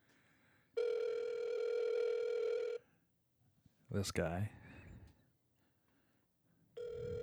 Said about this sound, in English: Answer the fucking phone.